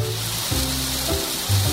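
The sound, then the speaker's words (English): Steady, dense hiss of rain falling, constant and even throughout, with a low droning tone that shifts pitch a few times underneath. No voices. “Oh no, it's raining. Can you hear that?”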